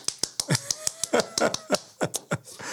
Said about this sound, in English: I'm not going to tell you today. You'll have to tune in next time to find out what that clap was for.